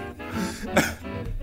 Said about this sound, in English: If I laugh too much, I'm going to go into coughing fits.